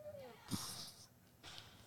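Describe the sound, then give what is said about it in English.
A voice imitates a cat snoring: a short snorting, hissy inhale followed by a breathy, wheezy exhale, fairly soft, with no words spoken. “She heard the little boy snoring. She heard the cat snoring.”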